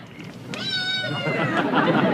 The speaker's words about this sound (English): Was that a cat? Oh, yes. I have lots of cats.